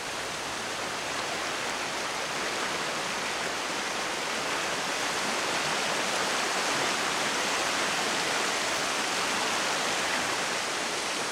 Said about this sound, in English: Up here on the moors, it rains for 200 days of the year, and that's 2 metres of total rainfall. So it's water like this in streams and rivers that's responsible for moving all these grains from their source up in the granite, downstream to the beach.